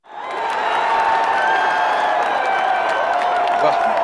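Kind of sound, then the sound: crowd, crowd of fans cheering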